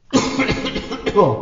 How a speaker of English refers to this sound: Please, let me pass! The voice weakens into a low, wheezing cough.